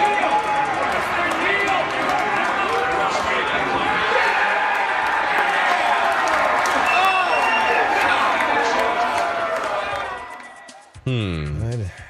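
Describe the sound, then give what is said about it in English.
A dense crowd of bettors with money on the Saints, inside the sportsbook at the MGM Grand Las Vegas, roars and shouts in a sustained, loud wall of cheering for about ten seconds, then it cuts away and a single voice speaks briefly. “Video of Wolves fans going nuts.”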